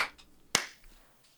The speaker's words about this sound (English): All right. Clap sync. 3, 2, 1.